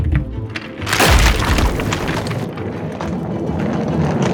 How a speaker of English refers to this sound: Far below them on the deck of the Zeppelin, a cannonball at the base of a brass monkey came loose, causing the entire pyramid of steel balls to come crashing down.